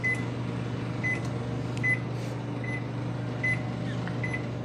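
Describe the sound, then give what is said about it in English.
A microwave oven, nicknamed Chef Mike, hums steadily with a low drone while short, high-pitched beeps repeat at a regular pace, about six of them, with no talking. “And that's Chef Mike. Hang on.”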